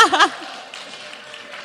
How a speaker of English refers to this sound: Yeah, give her applause.